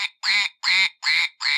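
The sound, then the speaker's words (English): A duck quacks loudly, a run of four or five nasal, raspy quacks in a steady, evenly spaced rhythm with short gaps, no talking. “Well, that's an erotic duck noise.”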